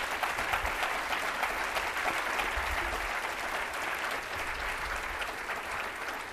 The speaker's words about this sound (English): Another round of applause for these wonderful gentlemen.